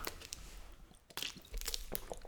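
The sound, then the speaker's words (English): Someone drinks water, with a few wet gulps and swallows in quick succession and soft squishy mouth noises in between. No one speaks. “Water stay break. Hydrated, folks.”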